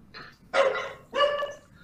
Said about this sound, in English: Bad dog. Is that yours, man? Yeah, sorry. Oh, it's yours.